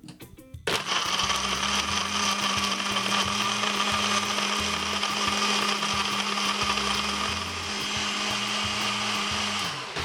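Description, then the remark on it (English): A blender blending piña colada ingredients kicks on after a brief pause and runs steadily for several seconds, a loud, high-pitched motor whir with a low churning rumble from ingredients tumbling inside. No talking. “Right, now that everything is ready to be blended, let's fire up the blender.”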